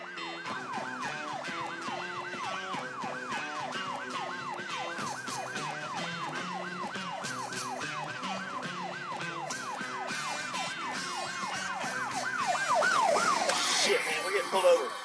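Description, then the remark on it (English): A police car siren, sounding as a car is pulled over, yelps in fast, repeating up-and-down sweeps for the whole stretch, loud and steady, swelling a little louder and harsher toward the end. “Pulled over. Hold on.”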